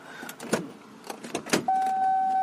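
A door being opened to let in a cat named Yuki: a run of sharp clicks and clunks from the latch and handle, followed by a steady, sustained high-pitched tone that holds to the end.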